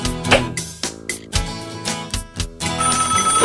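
A telephone rings with a bright, melodic electronic ringtone, repeating in quick bursts of rising and falling tones. It's fairly loud and steady throughout, with no voices.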